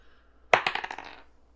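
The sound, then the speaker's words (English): A die, rolled for an owl's perception check in a tabletop game, clatters across a hard surface: a sharp initial strike at about half a second, then a quick series of bright rattling bounces that fade out over roughly half a second. “I roll for the owl for the perception?”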